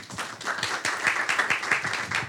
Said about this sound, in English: And I'd like to ask you all to give a big round of applause to both of our guests. And thank you for coming through.